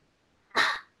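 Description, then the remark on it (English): A single sharp sneeze bursts out after a moment of near silence, loud and breathy, then trails off quickly. No one talks. “Bless you.”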